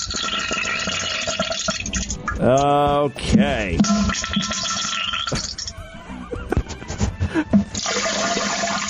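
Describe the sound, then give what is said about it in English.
Loud, continuous rushing water pours and splashes for nearly nine seconds, like a small waterfall, made by a man defecating, with a brief voice cutting in near the middle and a few short sounds scattered over the flow. “So watery. Listen to those waterfalls.”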